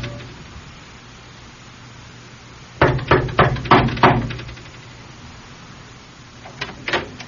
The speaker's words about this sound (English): Now, I'm going over there and knock on their door and just tell them, frankly, we're concerned about them.